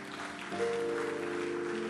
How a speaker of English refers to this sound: Am I talking to somebody this morning? Yes, if you are clapping your hands, clap it well.